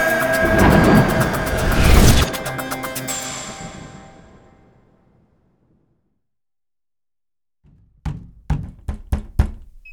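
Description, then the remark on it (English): A loud crashing boom rings out and slowly fades to silence, then a door is unlocked: five or six sharp metallic clicks and clunks arrive in quick succession. “Someone's unlocking the door.”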